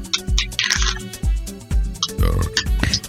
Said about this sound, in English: Soup. Oh, cool. Those are the most disgusting burps I can imagine. It's winter. Soup burps. It sounds like super. It sounds like cream of mushroom soup.